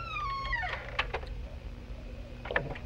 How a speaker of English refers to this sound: Here goes. The door is open. Stepping inside. I am now closing the door.